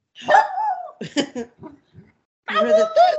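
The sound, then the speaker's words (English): A small dog gives a few high, yappy barks: a longer drawn-out one, a quick cluster of short yips, then another pair after a brief pause, loud. “You hear the dog in the computer? He has the cutest bark.”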